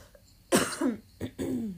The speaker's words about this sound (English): There we go. It's fine. I'm glad I'm coughing for the pod. It was me last time. I feel better now.